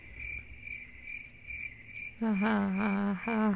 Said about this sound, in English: Sure, the crickets.